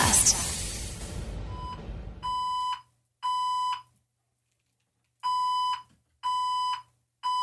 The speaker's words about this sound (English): Crap. Okay, hold on. It's back again. It's a fire alarm in the building.